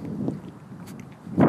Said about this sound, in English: It's very windy along here.